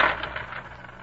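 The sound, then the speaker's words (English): Coins drop and clatter on a hard floor at a wake: a burst of bright metallic clinks that quickly settles into a few fainter jingles, with no voices. “You dropped some coins, Jippo.”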